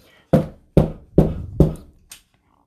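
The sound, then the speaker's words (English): Five firm knocks on a door in a steady rhythm, the last one softer, fairly loud, followed by quiet. “Are we knocking at Jesus' door now?”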